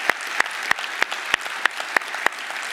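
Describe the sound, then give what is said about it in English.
An audience claps together in a steady, even rhythm, about three sharp claps per second, with a soft crowd murmur between beats. There is no talking. “If you're going to clap, clap.”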